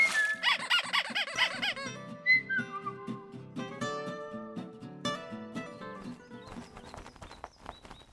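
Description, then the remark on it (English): A rubber duck toy for a bird bath squeaks repeatedly, starting with a rapid wobbling run of squeals and then breaking into a string of short, shrill squeaks and whistly peeps. No one speaks. “You want a rubber ducky in the bird bath too?”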